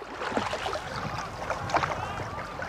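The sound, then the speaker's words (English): Paddles dip and pull through water with splashy, gurgling strokes, steady, as a canoe with a couple of rowers glides along; faint background wash and no clear speech. “That afternoon, we went out on a canoe with a couple of rowers and recorded stereo samples of the different type of effects that would be somewhat typical of an event.”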